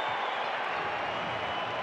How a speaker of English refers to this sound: Zubac on the poster. Crowd loving it.